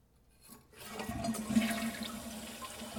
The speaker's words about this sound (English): It's like, it's water. Water doing what? Oh, are you kidding me? Are you kidding me? Is that water being flushed down a skibbity toilet?